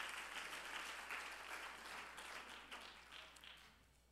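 A seated church audience claps their hands together in a dense, steady burst of applause that holds for several seconds, then gradually thins and softens toward the end.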